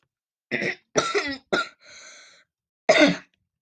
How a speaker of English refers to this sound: And no, I wasn't coughing because that's disgusting. But it is. I'm coughing because I have something in my throat. Probably the water I've been swallowing. Choking on it.